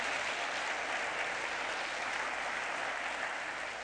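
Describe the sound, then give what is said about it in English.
An audience claps steadily for about four seconds, a dense, even wash of many hands with no voices standing out, applauding the statement that Christ has been raised from the dead. “You can clap at that.”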